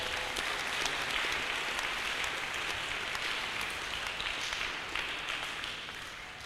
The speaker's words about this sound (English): Somebody clap for Jesus.